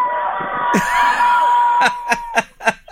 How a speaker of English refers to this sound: But before we go, we have to yell. Everybody has to yell. Yell.